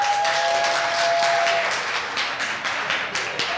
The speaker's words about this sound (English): We're going to clap. We're going to make some noise. So if this is you, if this is true of you, then just make some noise, clap, whatever.